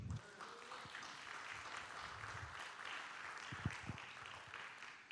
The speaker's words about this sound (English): And if you've been to the cross, can you give the Lord a great round of applause today?